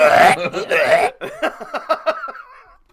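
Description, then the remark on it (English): A voice imitates retching: a loud, strained gagging heave, then a run of shorter, choppy gulping pulses that fade out. “You think he's making donkey noises in that song? No, he's retching.”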